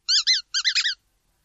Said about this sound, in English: Rubber duck.